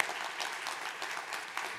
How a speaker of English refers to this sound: So why don't you notice, why don't you turn around, just give them a round of applause at both campuses. They do such an awesome job.